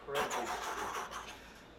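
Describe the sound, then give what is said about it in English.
A voice imitates the engine of a car going too fast past people on a street, with a sustained, buzzing vocal rumble lasting under two seconds, fairly loud, with slight pulsing fluctuations before trailing off. “Also, his car was like this.”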